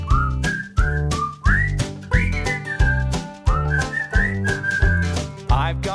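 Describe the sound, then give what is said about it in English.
A bright whistled melody glides and slides over a steady, bouncy musical backing with regular drum-like beats, the whistling clear and upfront throughout. “I don't think whistling is at a hand claps level for me. But I like it. I like the whistling.”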